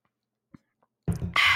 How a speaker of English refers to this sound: Let's take some water.